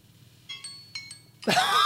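A kitchen timer dings with four bright, ringing chimes in two quick pairs, followed by a sudden loud burst of rustling noise. No one speaks.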